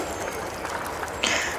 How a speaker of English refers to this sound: it really kind of stands out to you that like people are cheering and clapping for some reason.